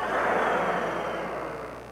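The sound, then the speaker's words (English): A crowd of voices imitates a cat's purr in unison, a loud, steady, rumbling roar of breathy noise that holds for about two seconds and tapers off slightly at the end. “Can everyone together give me a giant purr?”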